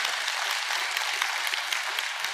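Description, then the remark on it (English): A crowd applauds the military veterans among them, dense overlapping claps forming a bright, continuous wash of noise at a fairly even level throughout, with no voices standing out. “Come on, let's give them a round of applause, by the way.”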